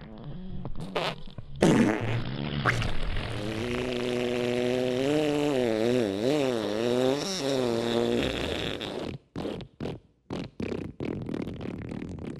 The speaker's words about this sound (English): And the farts. I appreciate especially all the farts.